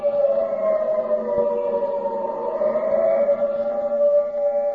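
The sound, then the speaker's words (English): An air raid siren sounds alone, a loud, sustained droning wail holding a steady pitch with only a slight rise and fall. It continues unbroken, with no voices present. “The siren is a musician of no value, knowing only one tune, which each time played is a disturbance of the peace.”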